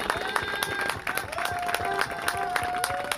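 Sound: audience applause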